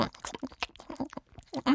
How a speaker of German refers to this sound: antwortete die Stimme, bevor sie in ein ziemlich lautes und schmatzendes Kauen überging.